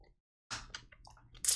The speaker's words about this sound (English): Hold on, excuse me, I gotta take a little sip of water. Build suspense for the story.